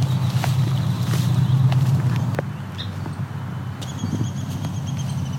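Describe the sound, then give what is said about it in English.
A downy woodpecker gives sharp, scattered high ticks, then a thin descending trill near the end, all above a steady low rumble with no talking. “It's a downy woodpecker.”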